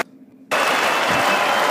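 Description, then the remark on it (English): After a half-second of near silence, a loud wall of cheering from Members of Congress bursts in as the President of the United States is presented, played from a recording; it holds steady, a dense roar of many voices and noise with no single speaker. “All right, fast forward to fucking the cheering.”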